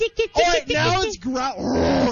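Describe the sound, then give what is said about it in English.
A 700-pound lion growls, a deep, rough rumble rising and falling in several drawn-out pulses over a couple of seconds. “Seriously, it's freaking growling.”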